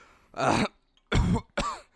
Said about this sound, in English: You have 30 more seconds of fake coughing. Oh, fuck. Yeah, that's all I'm coughing.